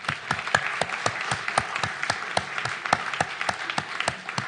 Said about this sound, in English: Would you like to clap your hand for Jesus, for him, please?